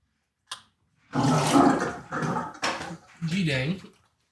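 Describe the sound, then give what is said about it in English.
Water runs from a sink faucet in a couple of short, steady gushes, fairly loud, then cuts off as a voice speaks briefly over a trailing splash. “I can refill it, but we can do it better, stronger.”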